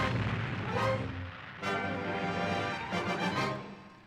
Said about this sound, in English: The theater's gonna blow! A deafening blast shook the area as the theater exploded.